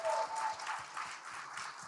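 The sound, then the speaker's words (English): A short burst of audience applause, a dense crackle of many hands clapping at a steady, moderately soft level throughout, with faint low thumps pulsing underneath and no voices. “So give him a round of applause just by being in that environment.”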